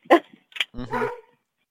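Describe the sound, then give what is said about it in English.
A dog named Shadow barks: two short, sharp barks followed by a longer, drawn-out bark, with no one talking. “my third one was Pepper, and now this one is Shadow”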